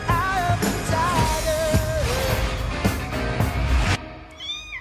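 A cat meows loudly and insistently in long, wavering cries over a busy, noisy background, stopping near the end before a few fainter chirps follow.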